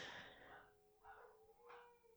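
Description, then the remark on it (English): A dog that wants to go outside whines in three high, nasal bursts: a long falling cry followed by two shorter rising whimpers, fairly faint with no talking. “This dog is suffering of like FOMO, I would say. really dogs wants to be do outside.”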